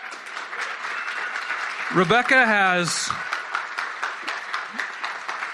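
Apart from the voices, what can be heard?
audience applause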